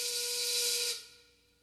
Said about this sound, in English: It's one of those songs that you can recognize right away. It starts with a steam whistle.